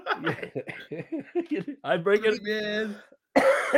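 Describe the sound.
A voice murmurs and laughs briefly, then after a short pause a single harsh, close-up cough bursts out at the very end.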